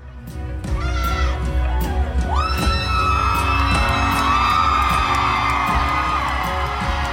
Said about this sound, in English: Look at people clapping and applauding for popping a beach ball. She deflated a beautiful little beach ball, and we're cheering for that.